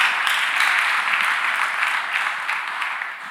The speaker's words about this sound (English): Give God a clap offering this evening.